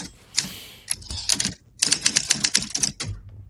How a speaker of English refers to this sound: Give me a typewriter to segue out to the outro for Fawcett.